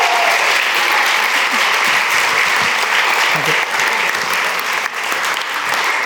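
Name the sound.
audience cheering and applause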